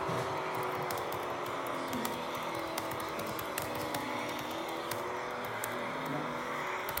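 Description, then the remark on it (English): A pack of race cars following a safety car drones steadily at moderate revs, a dense, continuous mechanical roar with pitches gently rising and falling, heard without any voices. “Everyone catch up to the safety car.”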